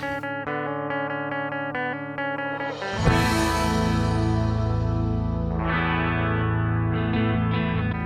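Loud distorted rock music: a few seconds of effected, chorus-like guitar tones, then the full band crashes in with a thick wall of fuzzy, saturated guitar that stays dense and loud to the end.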